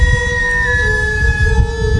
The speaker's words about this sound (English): By the way, the Japanese parade, some of the music, too, the instruments, the traditional Japanese instruments. Imagine going down there on a Saturday morning and listening to this. Oh, yeah. Oh, my God. It sounds like an air raid siren.